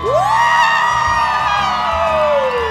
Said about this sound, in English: And the small crowd erupts.